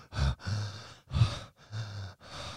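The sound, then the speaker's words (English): A voice imitates a partner's breathy sexual moaning: five rhythmic gasps and sighs in quick succession, alternating sharp intakes with drawn-out, low voiced exhales, moderately loud with no words. “And their moaning goes...”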